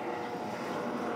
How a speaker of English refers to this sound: Well, that's a helicopter. I wonder what they're doing.